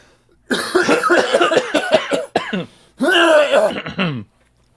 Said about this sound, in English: Do you have to clear your throat? Clear your throat.